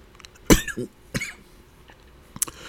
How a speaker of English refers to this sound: Oh, I'm sorry. I've been dealing with a cough lately. But I like keeping it raw, so I'm going to leave that in there.